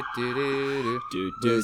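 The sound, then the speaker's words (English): An emergency vehicle siren blares from a vehicle driving by and getting closer, its layered wailing tones wavering and pulsing, with a higher tone sweeping steadily upward toward the end. “He's playing more sirens as he gets closer.”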